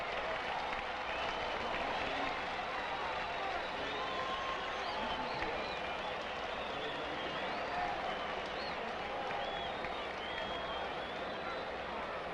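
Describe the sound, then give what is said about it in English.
A large baseball stadium crowd roars and cheers steadily in the 9th inning, with Koufax pitching and Felix Mantilla batting, a dense wash of voices, clapping and whistles that holds at a loud, even level throughout. “Out in the 9th inning, and Felix Mantilla the batter. And listen to this crowd.”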